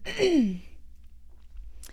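A single short throat clearing, a rough voiced rasp that drops in pitch over about half a second, followed by near silence and a faint breath at the end.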